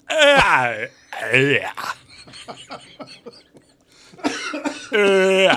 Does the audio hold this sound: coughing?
yes